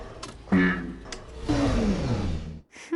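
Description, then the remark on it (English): A voice imitates a sputtering elevator engine trying to start: a couple of short rough bursts, then a longer growling rumble whose pitch slides downward before cutting off, with a brief sound afterward. “The engine is sputtering. It's not running with full power yet.”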